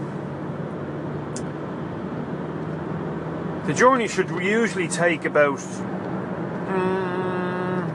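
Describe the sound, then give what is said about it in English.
Steady low road rumble from inside a car moving on the M50 motorway in heavy Friday afternoon traffic, with a person speaking briefly in the middle and a faint humming tone near the end. “But I'm now still on the old motorway, and I'm 55 minutes on the road.”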